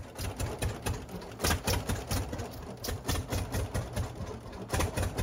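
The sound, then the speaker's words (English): A one-owner 1928 John Deere D tractor, shipped to Higginsville, Missouri, runs steadily, its loud, rhythmic chugging pulses repeating evenly over a low mechanical rumble, with no voices present. “This tractor is John Deere D. It was purchased in 1928.”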